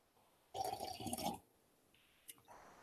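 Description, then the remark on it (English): A brief, fairly loud liquid sound lasting about a second as someone sips tea, followed by quiet rustling and a single faint click. No one speaks. “I'm just going to wet my whistle with some tea here.”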